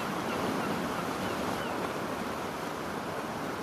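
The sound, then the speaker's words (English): A soft, steady rush of wind blows gently along a beach without pause, an even whooshing hiss that stays constant throughout with no voices, blending into a surf-like wash. “And you hear the wind blowing gently.”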